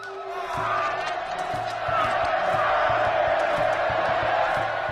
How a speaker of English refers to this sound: So they'd cut the beating hearts out of their victims' chests with a razor-sharp obsidian blade, as a crowd of onlookers cheers wildly.